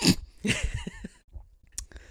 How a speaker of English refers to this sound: I heard your gulp and I thought you were gonna spit it.